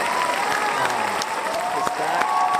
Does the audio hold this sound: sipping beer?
no